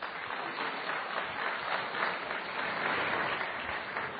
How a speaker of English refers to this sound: That reminds me of something. That applause triggered a memory.